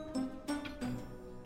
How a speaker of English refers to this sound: That dang grandfather clock. Taunting me for an eternity. Tick-tock! Tick-tock! Calling my name, trying to hypnotize me with its golden rod.